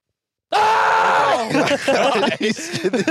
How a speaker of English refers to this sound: So I just wanted to warn you guys that I screamed really loudly at the beginning of the podcast. So just be ready in 3, 2, 1.